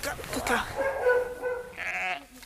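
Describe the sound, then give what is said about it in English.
Several sheep bleat in a lambing shed where a sheep is giving birth, their wavering calls overlapping one after another, with a higher, quavering bleat rising near the end before fading. “You can't tell a sheep that it's only allowed to give birth in daylight.”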